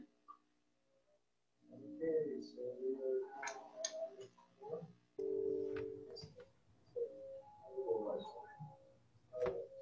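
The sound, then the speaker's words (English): A phone rings with a melodic electronic tone that starts after a brief quiet moment and keeps sounding for several seconds, steady, with some faint clicking mixed in. “My phone started going off.”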